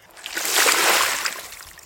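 water splash sound effect

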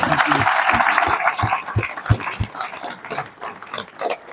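audience applause

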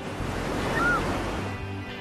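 ocean waves

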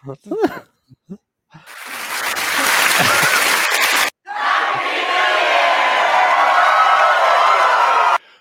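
applause and cheering

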